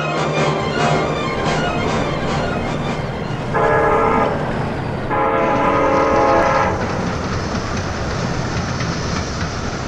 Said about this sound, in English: Hey, the train's stopping. Ain't stopped here 4 years.